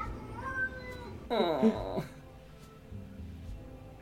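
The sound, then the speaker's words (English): A cat vocalizes excitedly: a thin, rising whine, then a loud, strained, warbling meow lasting under a second, followed by quiet background noise. “How do I unlock that mode on my cat? You show it a bird or a weird bug.”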